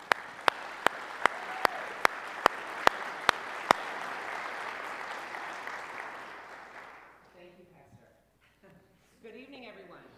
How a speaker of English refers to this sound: And if you will, you don't clap very often for a guest, but you know, he's worth it, all right?